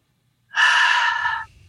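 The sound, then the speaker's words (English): A single deep inhalation of Respire drops drawn in through hands cupped around the nose and mouth, a loud, airy rush lasting about a second before it cuts off, with a faint low rumble after. “I'm cupping my hands. Around my nose and around my mouth. And I'm breathing. I'm taking 3 deep inhalations in.”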